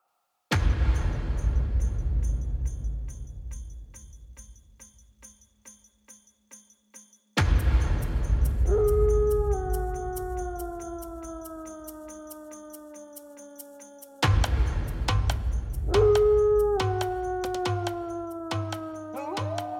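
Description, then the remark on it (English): Wolves howl in long, drawn-out, slightly falling cries, several voices overlapping in two bouts, each preceded by a deep rumbling boom, with a faint steady ticking underneath and no talking. “The howling of wolves had continued to grow closer throughout the day, as the small party of companions discussed their options just outside the circle of stones.”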